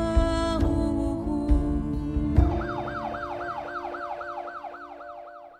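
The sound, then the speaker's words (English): An ambulance siren wails in rapid, repeating rising-and-falling sweeps over a low engine rumble, steady at first and then gradually fading as the ambulance speeds off. “And just like that, his wife and youngest son looking on helplessly, the ambulance sped off.”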